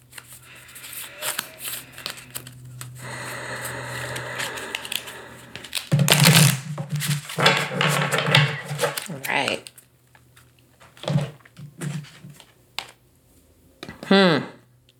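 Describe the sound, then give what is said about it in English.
A deck of oracle cards being shuffled, with repeated papery riffles and soft slides that surge and pause, ending in a final quick flutter of cards. “All right, just shuffling these up.”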